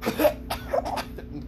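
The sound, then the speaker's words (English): A person acts out a coughing fit: four or five harsh, raspy coughs in quick, uneven succession, with no talking. “Coughs up blood all over the blanket.”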